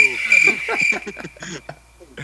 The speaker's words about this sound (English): Boo. Crickets. Crickets. Boo.